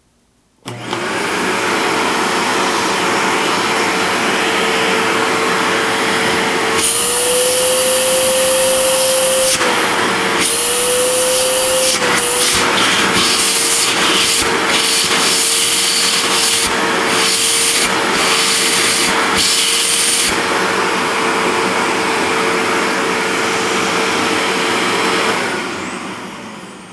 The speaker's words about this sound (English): This plastic canister is a lot lighter than the Perfect metal canister. Anyway, here we go. This is the Perfect Products C103 plastic canister vacuum.